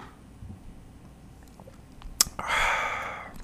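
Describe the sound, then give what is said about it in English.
A quiet sip: a small click like a cup touching lips, then a second of airy slurping as liquid is drawn in, with no talking. “All right, I just took another sip of that, and holy moly, that's a bad mamma jamma, and I mean that in the nicest possible way.”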